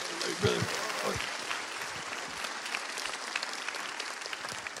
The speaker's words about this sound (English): So can we give him another round of applause?